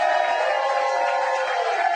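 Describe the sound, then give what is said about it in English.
A large live crowd at the Chiefs Kingdom Show cheers and roars continuously, a dense, steady wall of many voices with no pauses, loud throughout. “What a crowd we have here tonight.”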